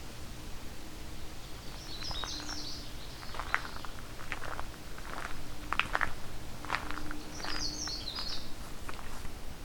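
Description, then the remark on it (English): Outdoors in a forest, a songbird sings two short, bright, twittering phrases a few seconds apart, while soft crunching footsteps and faint ambient noise continue throughout. “But now we have Canada warbler, black and white warbler. Yellow throat, the common yellow throat, that is.”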